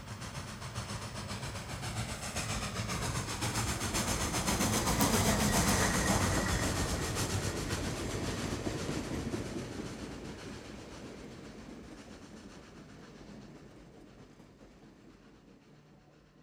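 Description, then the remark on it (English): A train rushes past, its broad rumble and rattling wheels swelling to a loud peak around the middle, then slowly fading as it moves away. No voices are heard. “out onto a train trestle 90 feet above the ground, only to find themselves in the path of an oncoming train.”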